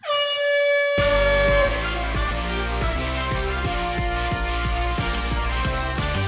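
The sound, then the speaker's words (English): A loud, harsh buzzer blares with a steady, rich tone, then upbeat music with a regular thumping drumbeat kicks in and plays on without any talking. “Sound of the buzzer means it is time for another edition of Coach's Corner.”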